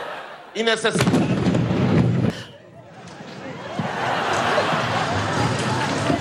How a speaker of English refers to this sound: But did you see how they reacted when the explosion goes off?